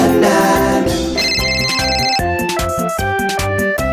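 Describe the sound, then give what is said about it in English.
A loud iPhone ringtone plays a bright, chiming melody with a steady bass pulse, its short notes repeating in a quick rhythmic pattern for the whole clip, with no talking. “Can't you hear the iPhone ring?”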